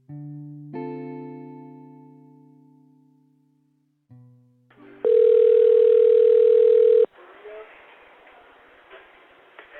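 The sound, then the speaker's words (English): A loud, steady electronic telephone ring tone of a 911 emergency call, placed by a worker at a Taco Bell on Admiral Callahan, sounds for about two seconds, following a few fading sustained tones and giving way to a hissy, crackling phone line. “The night everything changed for Willie's friends and family started with this phone call.”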